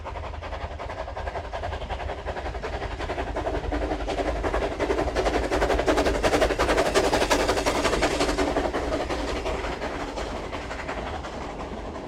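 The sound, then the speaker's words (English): A train rumbles steadily along the rails with a rapid, rhythmic clattering of wheels, growing louder toward the middle and then easing slightly, with no voices present. “You can go anywhere on the dream train.”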